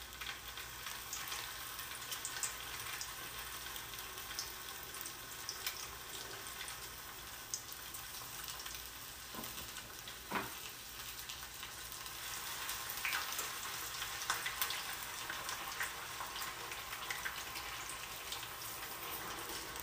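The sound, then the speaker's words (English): Fish frying in hot grease: a steady, dense crackle and sizzle with constant popping, moderately loud, running unbroken for the whole stretch with no voices. “I'm frying fish. And I had to make sure this motherfucking grease don't, you know what I'm saying?”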